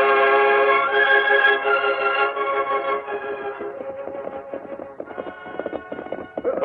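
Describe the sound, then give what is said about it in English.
Horses' hooves clip-clop in a steady, trotting rhythm as riders head south, beneath a sustained musical backing, the hoofbeats growing sharper and more prominent through the second half. No one speaks. “Well, we're riding south.”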